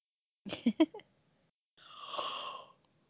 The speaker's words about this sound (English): Okay, big yawn, ready to go.